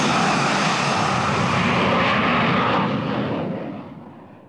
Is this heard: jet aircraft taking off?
yes